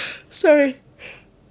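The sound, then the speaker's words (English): A single yawn: a breathy intake swelling into a drawn-out voiced groan that slides downward in pitch, then a soft trailing exhale, with no talking. “Sorry, I didn't mean to yawn.”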